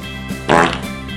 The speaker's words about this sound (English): Who farted? I did.